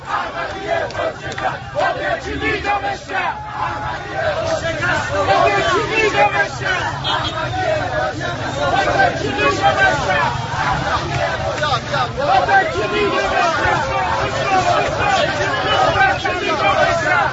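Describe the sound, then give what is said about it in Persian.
A large crowd in an Iranian city chants political slogans in support of Ahmadinejad, a loud, continuous roar of many voices with rhythmic surges of shouting and background babble throughout. “رفته توی شهری، نمیدونم کدوم شهر بوده، ولی خیلی به نفع شعار دادن.”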